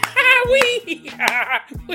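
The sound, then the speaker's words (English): A high, wild laugh rises over a few sharp hand claps that land with uneven spacing, loud, the voice cackling between the slaps. “that's kind of a maniacal laugh and a maniacal clap.”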